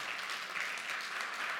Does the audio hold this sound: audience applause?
yes